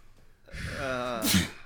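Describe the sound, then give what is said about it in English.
A single sneeze: a drawn-out, voiced intake of breath rises for about a second, then breaks into one sharp, hissy burst. No one talks over it. “Bless you.”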